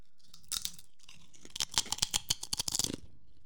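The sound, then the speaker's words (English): Gluten-free crispy rice snacks being crunched: a few crackly bites, then a quick irregular run of sharp, bright crunches, moderately loud, with no talking. “crispy rice snacks. They look amazing.”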